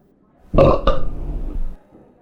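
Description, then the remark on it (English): A loud, drawn-out belch starts with a sharp double onset and then rumbles on for about a second before trailing off into quiet. No talking accompanies it. “We'll be discussing and rating these beers with these Suds ratings, plus our signature belching sounds.”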